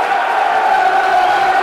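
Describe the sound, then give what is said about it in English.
A large football stadium crowd roars and cheers after a good tackle, about 59 minutes into a match against QPR, in a loud, sustained swell that holds steady without a break, a dense wall of many voices shouting together. “As you can hear, a good tackle is all it needs often to get this crowd going.”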